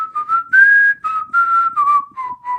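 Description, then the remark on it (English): A person whistles a bouncy cartoon theme melody, clear notes sliding between pitches in short phrases with brief breaths between them, no talking. “it's one of the most pleasurable things in the world to whistle is the Recess theme song”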